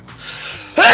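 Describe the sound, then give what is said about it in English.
A loud sneeze: a drawn-in breath builds for most of a second, then bursts into a sharp, noisy expulsion at the end. “Bless you. Bless you.”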